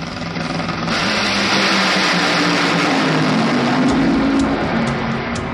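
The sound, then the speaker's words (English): The engine of the Tequila Patron Toyota Camry Nitro Funny Car, a nitro Funny Car drag racing engine, roars loudly and steadily for several seconds, a dense, rasping blast with rising pitch partway through, overwhelming with no talking. “How many horsepower is that? Something like 10,000?”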